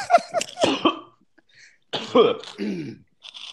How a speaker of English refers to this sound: The only thing … has contributed to the conversation was coughing in the background